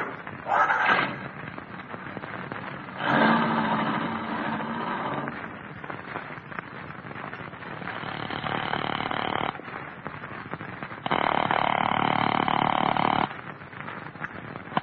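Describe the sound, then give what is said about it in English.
A rough, rattly old car engine sputters and roars in uneven bursts, surging loudly twice before settling into a ragged idle, with no voices. “This your car? Yeah. I'll sure be glad to get rid of this clunk.”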